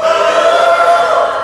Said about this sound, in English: I like the cheering over here, you know.